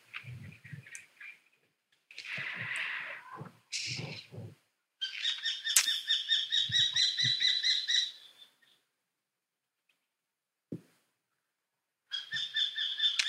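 Birds twitter in bright bursts of rapid, high chirps, with a long trilling run in the middle, a short pause, then more chirping. The calls sound clear, with no talking.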